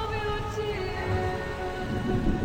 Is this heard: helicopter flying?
no